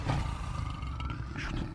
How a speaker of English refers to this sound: Dang, he's getting tore up by that lion.